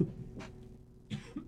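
Two quick coughs about a second apart, fairly close and moderately loud, with a faint low hum underneath and no talking.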